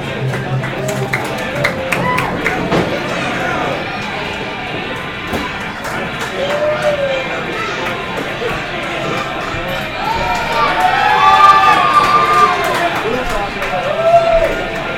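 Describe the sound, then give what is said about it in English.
A dense crowd roars and cheers steadily throughout as wrestler Jack Verville comes to the ring, swelling louder near the end, with voices talking over the din and faint whistles rising from the audience. “Going around, the crowd welcomes him with open arms.”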